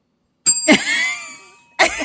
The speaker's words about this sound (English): That wasn't my bell! I'm going to start getting a horn instead. So we can tell the difference.